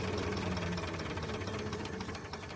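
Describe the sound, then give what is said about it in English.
A steam engine at the Cambridge Museum of Technology runs steadily, its dense mechanical clatter and low rhythmic knocking with a faint hiss layered on top and no one speaking. “That was David Gates, the main engine driver at the Cambridge Museum of Technology.”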